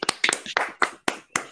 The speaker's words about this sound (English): Round of applause for those two.